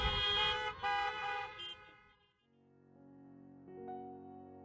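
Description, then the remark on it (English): Several car horns honk at once at a Sabbath church service, loud, overlapping blasts for a couple of seconds, then fainter sustained horn tones carry on. No one speaks. “I never thought that people beeping their horns at me could give me so much joy.”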